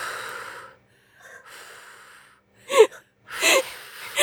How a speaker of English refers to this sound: Mom's doing deep breathing so she doesn't throw up.